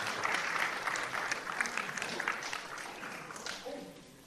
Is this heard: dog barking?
no